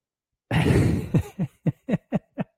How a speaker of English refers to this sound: I see. Yeah, I know you're sick. What? Tell the people what's going on. You got a cough? You got a cold?